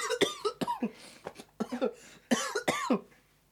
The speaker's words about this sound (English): coughed out a lung.